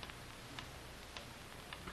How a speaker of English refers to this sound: Listen to that ticking. That's fate counting what may be the last minute of our lives. As long as you can hear the ticking, you don't have to worry.